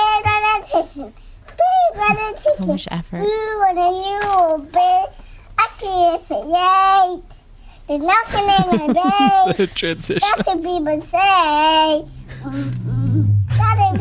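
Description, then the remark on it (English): A toddler under a large blanket sings loudly, high-pitched and full of feeling, holding long wavering notes and repeating the same verse over and over, with a brief low rustle near the end. “Picture a toddler under a large blanket singing very passionately. And then that loops for a while.”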